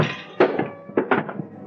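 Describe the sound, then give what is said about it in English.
A man's body slams into a small table with an axe lying on top as he is hit: a heavy thump, then a quick pair of clattering knocks as the table jolts, with a short rattling tail. No voices. “I hit him just as he hit the table.”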